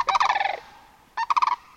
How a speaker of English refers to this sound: Others follow them now, flight upon flight, their great wings hush-shushing, and the snow geese among them warbling.